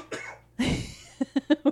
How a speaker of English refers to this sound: I saw you, like, searching around, like, how can I sneak a cough in here somewhere?